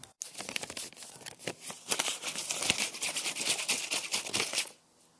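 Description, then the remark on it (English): Steady crinkling and rustling of paper money bills being handled, a dense crackly texture lasting about four and a half seconds before stopping abruptly, with no voices. “M for money.”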